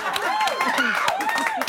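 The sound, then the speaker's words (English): Quick, uneven hand claps, around eight sharp smacks in under two seconds, clapped in someone's face, land over a continuous voice that rises and falls in pitch, as if someone talks or exclaims while clapping. “You didn't like her clapping in your face, did you?”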